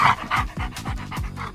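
A dog pants quickly and steadily, a rapid string of breathy huffs, with no voices alongside.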